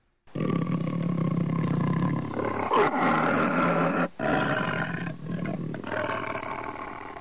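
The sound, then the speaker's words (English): A big cat roars loudly, a long rumbling, growling roar that breaks off briefly midway and then resumes, continuing to the end with no talking. “Oh! Jesus Christ, goddamn stupid cat.”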